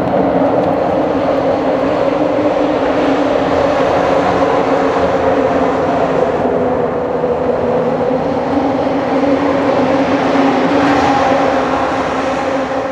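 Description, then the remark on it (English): A loud, continuous rumbling roar of cars crossing a bridge near water, with a steady droning hum that barely changes over the whole stretch and no voices. “Calm when it's just the water, and chaotic when the cars pass by the bridge.”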